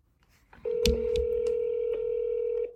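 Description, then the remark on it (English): A phone keypad tone sounds clear, a steady electronic beep held for about two seconds, with a few soft button clicks over it and no talking. “My phone is, like, way too sensitive.”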